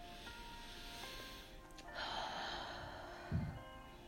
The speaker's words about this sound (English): And now I want you to open the cap of the oil and sniff into that.